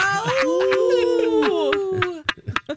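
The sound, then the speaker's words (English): Several human voices howl together in imitation of dogs, long overlapping wavering tones sliding up and down for about two seconds, then breaking into a few short, choppy yelps. “Just howl. We'll hear it.”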